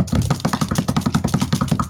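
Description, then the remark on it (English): Rapid, steady banging as an improvised drum roll before a giveaway winner is announced, a fast string of dull knocks and thumps repeating about eight times a second at an even volume with no talking. “That just sounds like a bunch of banging. terrible banging.”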